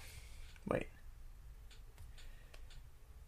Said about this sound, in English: It was just a push of a button. That was my Twitch button.